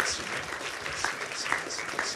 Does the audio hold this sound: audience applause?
yes